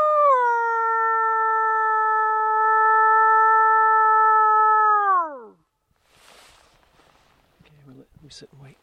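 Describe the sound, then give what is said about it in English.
A man, hands cupped together and head tilted back, imitates a wolf howl from a ridge in a forest of stumps: one loud, steady note held for about five seconds, then sliding down and fading out, followed by quiet breathy rustling and a short vocal sound. “cups his hands together, tilts his head back, and howls.”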